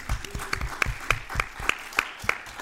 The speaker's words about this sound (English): Round of applause for the people at CrimeCon for putting this on. It's been amazing.